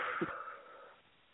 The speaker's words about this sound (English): Let's take a deep breath. Let's take a deep breath. Let's breathe in some vitality. Seriously, breathe it. Yes. Breathe in that flower field. Breathe it in. Let's go. I'm breathing. Seriously. I'm breathing.